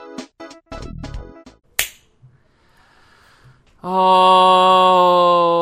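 A single sharp, close slap cracks out after a few short tonal bursts. A brief quiet follows, then a loud, steady buzzing tone takes over to the end.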